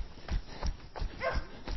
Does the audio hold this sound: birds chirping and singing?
no